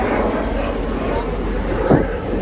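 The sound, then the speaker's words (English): A voice imitates a private jet flying overhead, a steady, dense whooshing roar held for a couple of seconds with a brief rasping burst near the end. “I started with a Cessna, anyway, and now we're on to a private jet.”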